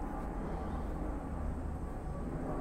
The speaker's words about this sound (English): Or on that airplane up there that we're hearing going by, someone could be playing Flea Devil on there.